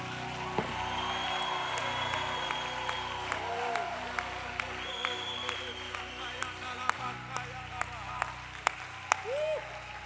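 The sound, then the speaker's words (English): At a Christian worship service, a large crowd claps steadily and loudly throughout as a hand clap of praise to the Lord, with sharp individual claps standing out, while scattered cheers, whoops and raised voices rise over the applause. “God, I know you're clapping your hands, but can you lift your voice just a little bit higher?”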